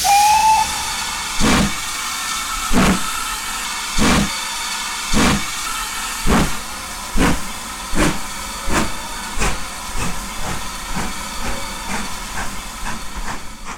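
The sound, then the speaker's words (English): A steam locomotive pulling a train across the countryside toward coal mines hisses loudly and steadily, its rhythmic chuffs repeating about once a second, with a short whistle tone at the very start. No voices. “As the train makes its way across the countryside toward the distant coal mines,”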